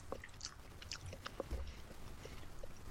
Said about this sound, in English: I'm trying so hard not to chew so loud, but it is difficult. I apologize to anybody listening over there.